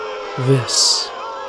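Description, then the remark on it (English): A single voice imitates a cheering crowd: a short low, voiced 'ooh' followed by a breathy, hissing rush meant to sound like a roaring audience, lasting about a second. “The roar of the audience.”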